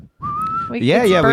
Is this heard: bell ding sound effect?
no